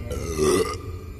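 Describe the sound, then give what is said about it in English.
A single loud, drawn-out burp from the character Baba Butaba, with a low, rumbling croak that swells in the middle and trails off, with no talking. “And when Baba Butaba burps, well, strange things can happen.”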